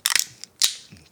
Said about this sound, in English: Grab your can. Grab your glass. Without further ado, let's open her up.